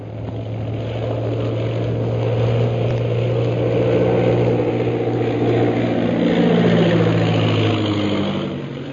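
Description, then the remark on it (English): Propeller plane engines of a squadron of 15 planes drone steadily as they land at a camp, a loud continuous rumble with a low throbbing hum that shifts slightly in pitch as the aircraft come in and settle to idle. “Following the example set by the leaders, the rest of the 15 planes of the Purple Triangle Air Squadron turn back from the ordered flight and land at the camp.”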